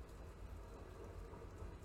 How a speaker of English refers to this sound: There's a train going by my window right now.